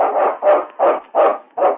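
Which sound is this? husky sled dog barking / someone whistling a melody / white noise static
husky sled dog barking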